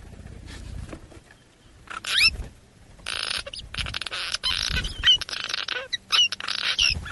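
Birds call in quick, high chirps and whistles, repeated in bursts over a steady hiss of rustling noise, moderately loud, with no one talking.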